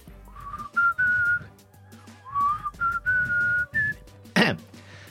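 A person whistles a slow, lilting melody of a rock ballad in clear sustained notes, with a short burst of noise near the end and low background rumble underneath.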